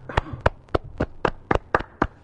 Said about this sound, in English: Yeah, we got to give them a couple claps there, because I would have never thought that they'd work together.